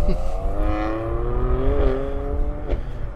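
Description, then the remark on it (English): A support vehicle drives by during stage 10 of the Tour de Cosse cycling race, with a steady droning engine hum, its pitch rising slightly then settling, over a constant low rumble of road and wind noise. “Hope that's not the broom wagon.”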